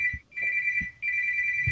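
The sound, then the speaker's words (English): A work cell phone rings with a steady, high electronic tone in repeated bursts, briefly pausing between rings, fairly loud, with faint low thumps underneath and no talking. “Hey, someone needs to answer their house phone.”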